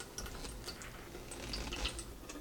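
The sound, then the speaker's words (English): Water drips steadily through a pitcher filter, small irregular plinks and trickles falling into water below, quiet with no voices. “I'll just let you see how fast the water kind of drips through the filter.”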